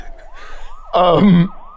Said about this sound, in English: if Dave hears sirens approaching